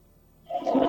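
household object, toilet flushing

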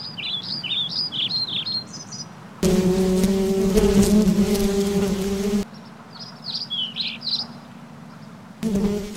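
insect, bees buzzing

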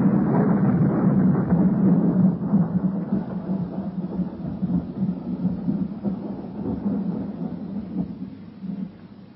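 nature, thunder rumbling

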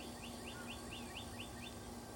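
bird, birds chirping outdoors

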